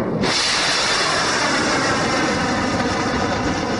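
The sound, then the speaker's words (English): A missile launches from the guided missile cruiser USS Philippine Sea, bursting into a loud, steady roaring hiss that starts abruptly and keeps blasting without letup for several seconds, with no voices. “That was video from the USS Philippine Sea. A guided missile cruiser provided to us by the military.”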